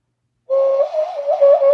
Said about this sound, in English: It's a process, but now you have a musical instrument at any time. Yeah. A hand whistle. And then you can even do, you know, some calls.